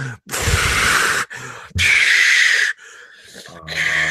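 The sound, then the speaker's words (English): A person imitates a woman breathing from an oxygen tank: a few loud, hissing breaths in and out, each a rasping, airy rush separated by brief pauses, with no talking. “Dude, and I didn't realize until 15 minutes later, she totally had an oxygen tank. And throughout the entire movie, she's just doing.”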